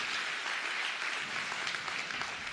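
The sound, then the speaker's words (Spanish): An audience claps steadily for a few seconds for the media and communications team, a dense, even wash of many hands with no voices rising above it. “¿Por qué no le dan un aplauso a todo nuestro equipo de medio de comunicación?”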